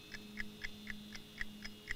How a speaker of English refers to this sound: there's the ticking. Edmundo has planted his bomb in the master robot console